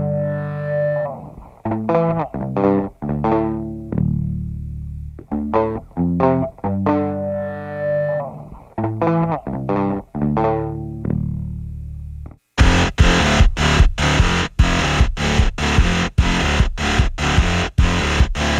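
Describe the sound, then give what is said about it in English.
A rock track opens with a choppy, fuzzed guitar riff in stop-start bursts, then erupts into a loud, heavily distorted full-band wall of sound with a pounding, driving rhythm. “A little slap around the chops of some distortion and what's not to like.”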